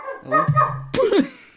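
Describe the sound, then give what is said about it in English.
A dog gives an odd, strained bark: a drawn-out moaning whine that breaks into one sharp, yelping bark, fairly loud, with no talking. “That's not these usual barks.”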